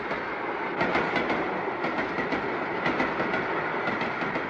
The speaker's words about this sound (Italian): Però l'altra volta c'erano più vagoni. Vabbè, insomma, il treno è sempre il treno, eh? Dovrebbero farlo passare più spesso!